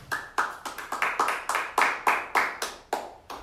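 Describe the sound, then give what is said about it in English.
A quick run of sharp hand claps, around fifteen in a little over three seconds, crisp and fairly even in loudness with a slightly uneven rhythm, and no voices. “Did he get a round of applause?”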